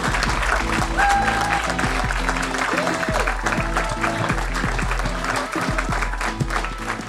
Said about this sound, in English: And can we have a loud round of applause? Everyone, give please it up.